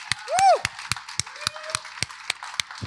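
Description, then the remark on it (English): An audience claps in a steady, fairly even rhythm of sharp claps, with a short high whooping cheer near the start and a faint drawn-out vocal tone partway through. “I'm clapping for that.”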